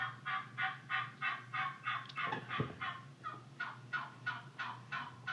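A wild turkey hen calls in a steady, evenly paced series of about a dozen raspy yelps, fairly loud, with no talking over it.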